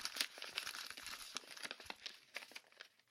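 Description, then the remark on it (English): A square of creased wrapping paper crinkles and crackles as it is unfolded, a dense run of small irregular rustles and snaps, soft but continuous for a few seconds, with no voices. “He got up, jumped with feline grace into my lap, and proceeded to unfold himself.”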